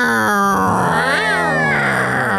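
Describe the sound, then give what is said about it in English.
A person imitates a cat with a drawn-out, wavering yowl, loud. The pitch swells upward midway, then settles again, with no talk around it. “I like when cats go like.”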